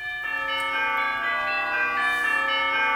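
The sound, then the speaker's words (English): Church bells ring out in a rich, overlapping peal, their bright metallic tones sustaining and layering continuously with no pauses and no voices. “For example, I want you to listen to this audio of some bells and see if you think, where would these bells be playing?”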